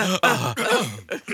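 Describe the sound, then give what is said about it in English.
A person clears their throat: several rough, gravelly voiced bursts in quick succession, loud and guttural, with brief pauses between them. “Let me clear my throat.”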